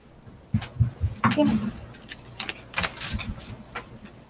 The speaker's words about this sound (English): Okay. Sorry, I dropped my dice.